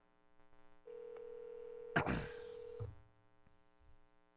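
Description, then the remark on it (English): A phone line rings once on an outgoing call placed live on air, a steady two-second ringback tone heard through the earpiece, briefly interrupted by a burst of crackling noise, then quiet line hum. “Oh, shit, it's ringing.”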